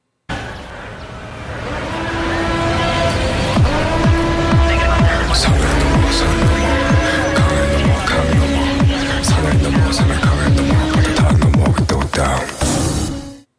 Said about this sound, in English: So the song begins with some field recordings of, you know, you've got nature and you've got some city life, you know, some cars and city noise, which I think is a really interesting way of starting a song.